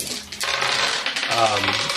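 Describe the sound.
Black and white dice rolled in a game clattering and rattling on a hard surface, a dense burst of clicks that tumbles on for a couple of seconds, with a voice murmuring faintly underneath.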